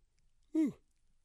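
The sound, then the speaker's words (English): A single short, stifled yawn, one brief voiced breath sliding downward in pitch, fairly loud, with quiet silence before and after. “Excuse me, another yawn.”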